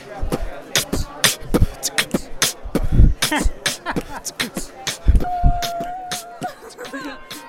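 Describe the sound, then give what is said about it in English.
A man beatboxing, firing off a quick, steady stream of crisp clicks, snares and deep kick thumps, with a brief whistled tone sliding in partway through. “Fun fact, he beatboxes.”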